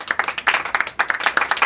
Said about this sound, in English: We have a small crowd in the studio today. It's a smattering of applause for you.